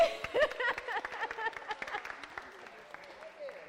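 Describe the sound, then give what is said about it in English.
People at 7th Street Christian Church applaud to welcome a returning member, a dense patter of many hands clapping at once, busy at first and gradually thinning out as it fades, with some cheering voices mixed in early on. “I just want to clap.”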